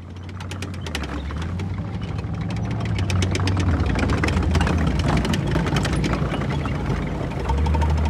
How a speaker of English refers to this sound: Mate, that's a tractor or a plough. That's a plough. That's a tractor plough, isn't it? A tractor plough. That sounds like a farm instrument.